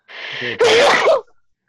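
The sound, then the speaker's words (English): A single loud sneeze: a short breathy intake followed by a sharp explosive burst, then silence. “Bless you.”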